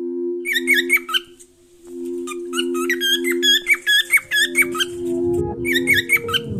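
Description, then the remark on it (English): A bird, Rigo, squawks in quick bursts of shrill, squeaky calls, pausing briefly between clusters, over a steady low humming tone. “Rigo is a bird.”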